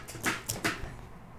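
A dog fusses, trying to eat a pistachio in its water bowl, making a few short whiny, snuffling bursts in quick succession before going quiet. No one speaks.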